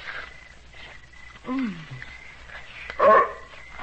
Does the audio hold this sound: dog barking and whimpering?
yes